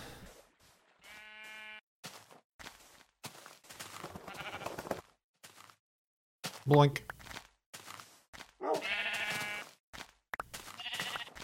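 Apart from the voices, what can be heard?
sheep bleating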